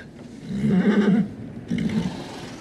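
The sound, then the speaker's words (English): A horse, which Isildur shares an apple with, whinnies in two wavering bursts, the first longer and stronger, the second shorter after a brief pause, with no talking. “did you guys think it was weird that Isildur, like, first of all, shares an apple with a horse?”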